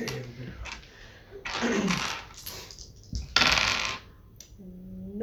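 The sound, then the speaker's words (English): Dice clatter and tumble across a hard tabletop in two rattling bursts, rolled for a strength and stamina check in a game, with brief murmured voices before and after. “Okay, well then, roll your strength stamina.”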